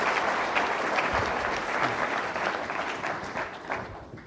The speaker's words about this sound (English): He's our guest of honor tonight, and I'm pleased to have him with us in one of his first public appearances as CEO. So please give a warm round of applause.